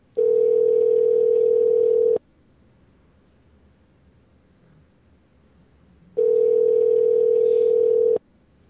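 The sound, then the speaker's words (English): A telephone ringback tone heard from the caller's end: two loud, steady two-second buzzing rings separated by a few seconds of quiet line, with no voices. “For the love of Christ, answer the phone!”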